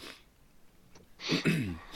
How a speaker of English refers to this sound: Ah, sorry, I got the sniffles.